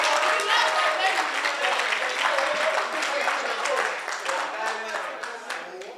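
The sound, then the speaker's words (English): A church audience claps hands steadily for Jesus for several seconds, a dense, continuous patter of applause with crowd voices mixed in, fading slightly toward the end. “Then clap your hands for Jesus.”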